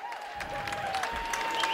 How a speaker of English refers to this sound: As a nice round of applause with the whistle, and here comes the tip.